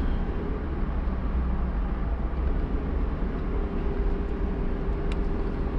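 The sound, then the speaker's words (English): A car engine roars and revs with a steady, heavy low rumble while the car is being driven. It holds an even loudness throughout and is continuous, with no voices. “I like this car a little bit better than my new car, and because it's the engine roar and revving, and it's a little better.”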